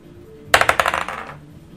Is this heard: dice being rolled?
yes